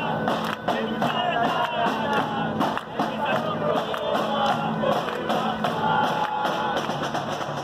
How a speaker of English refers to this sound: A fervent crowd, made of workers, activists, and neighbors, stood in front of the building, clapping, hands in the air, jumping and chanting.